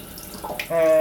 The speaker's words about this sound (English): Hang on, let me move the other orchids out of the way of the tap. And I'm literally going to turn the tap on and start looking at the clock.